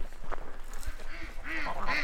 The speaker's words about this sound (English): We walk past a pond full of ducks and a pasture with Icelandic sheep until we see turkeys in the distance.